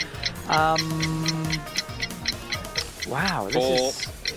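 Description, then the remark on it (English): A quiz countdown clock ticks steadily with quick, evenly spaced clicks, while voices briefly speak and hum over the ticking. “You can see who's in control of the clock there, can't you?”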